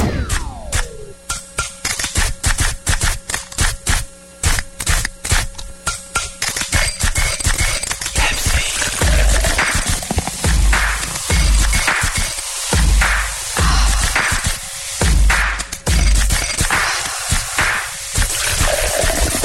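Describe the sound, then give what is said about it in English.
A can of Pepsi pops open with a sharp hiss, followed by a loud, steady crackle of carbonated fizzing and bubbling that surges in short bursts, with no one talking. “You're listening to the sounds of pure Pepsi refreshment.”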